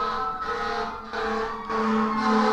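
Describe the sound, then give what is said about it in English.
A loud emergency vehicle siren blares on the street, its harsh tones shifting in a repeating cycle and growing slightly stronger, with no voices over it. “oh, siren break.”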